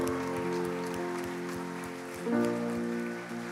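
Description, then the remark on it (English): A church audience applauds those who have chosen to follow Jesus, a steady, crackling wash of clapping, blended with sustained music chords and a soft, regular low beat underneath. “Can we give a round of applause for those who've chosen to follow Jesus?”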